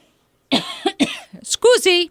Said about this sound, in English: Scoozy, coughed again,